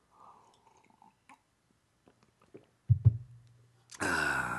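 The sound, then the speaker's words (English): A quiet sip of instant coffee: a faint slurp and small wet mouth clicks, then two dull low thumps, ending in a sudden loud, breathy rush of air. No one speaks. “I gotta take a sip of coffee.”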